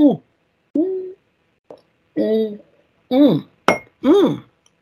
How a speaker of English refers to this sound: That was a good gulp, and I have finished my drink, and that always means the end.